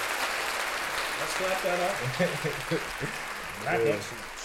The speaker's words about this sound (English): Black excellence, y'all. Let's clap that up. … and ….